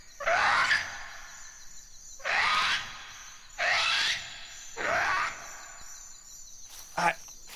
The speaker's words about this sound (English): I don't think I've ever heard birds like that. What were those?